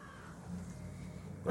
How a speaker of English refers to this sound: Oh, so the crows are starting up.